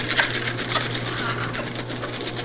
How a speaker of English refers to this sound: Got to oil. Got to add some oil. Oh, there it goes again. Let it be known that episode 179 was the first paper shredder appearance on the show.